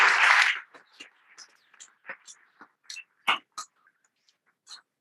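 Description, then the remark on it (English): A short burst of audience applause fades within a second, followed by a few scattered, irregular claps and soft murmurs that trail off. “You can't see anybody, so should we show appreciation with a round of British applause?”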